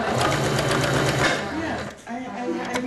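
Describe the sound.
A sewing machine whirs steadily with a fast, even stitching rhythm, loud and mechanical, as black skull-covered canvas fabric is sewn for a child's Halloween skeleton costume, and a voice begins speaking over it toward the end.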